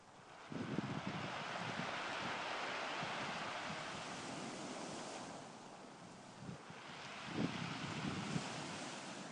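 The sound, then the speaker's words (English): Loud surf on the pebble beach at Sheringham Beach, Norfolk: waves surge in with a roar around the start and again near the end, and a steady hissing rush of pebbles dragged back by the receding water continues in between. “Combination of the waves coming in and the pebbles being dragged out as the water recedes, so it's quite loud.”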